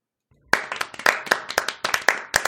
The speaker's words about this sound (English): A sincere applause for that.